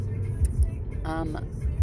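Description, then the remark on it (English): A car engine rumbles low and steady, as if a vehicle is rolling past, with a brief voice sounding over it partway through. “Like a that cool car.”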